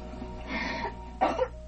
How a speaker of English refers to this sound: She was coughing. Okay, so she was coughing. But she's also sick.